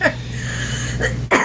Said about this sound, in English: So much coughing. I don't know what's wrong with me.